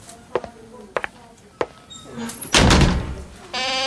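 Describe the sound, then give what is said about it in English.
A few sharp clicks and knocks of a handle and latch lead into a loud, heavy door slam with a rumbling impact, followed by a brief high-pitched creak or squeal. “Is with those doors. It's like Dr. Frankenstein's lab. Get some new doors, dude.”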